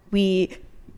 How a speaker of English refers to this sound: I had to sneeze. Bless you.